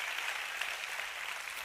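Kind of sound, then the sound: crowd, audience clapping and applauding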